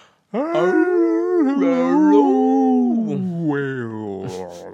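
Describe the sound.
A voice imitates an orca call: a loud, wordless wail that swoops up and down in pitch for about four seconds, ending in a few squeaky upward chirps.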